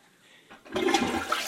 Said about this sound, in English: Insert sound of toilet flushing now.